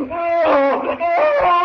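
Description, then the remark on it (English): A man, the character Tracy in a Tarzan story, cries out in agony as a vine bites into his chest: two long, strained wailing yells with a wavering, harmonic-rich pitch, loud and sustained with a brief break between them. “Tracy yells in agony as the vine bites into his chest.”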